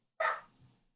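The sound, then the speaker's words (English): A single sharp bark from the speaker's dog, with a sudden onset and a short fading tail, moderately loud, with no talking around it. “I was going for the mute button, but then there was a reaction, so now it's canonical that my dog”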